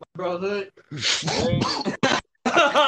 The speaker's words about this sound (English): He's coughing. Smoking the hookah, boy.